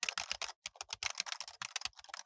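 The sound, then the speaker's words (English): Rapid keyboard typing as fine print is added, a dense run of crisp clicking keystrokes, steady and quick with brief pauses between bursts, no voices. “I can add it right now. Here, let's add it.”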